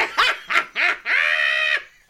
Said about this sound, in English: Neighbors reported hearing the old English bulldog named Biggie Smalls barking at around 4 a.m.